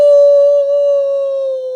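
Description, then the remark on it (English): A person imitates a wolf howl with one loud, sustained, steady-pitched cry, held for a couple of seconds with no talking. “Hey, dude. Howl!”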